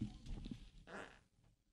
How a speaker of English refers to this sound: This is what we do on the MegaCast. We fart into microphones.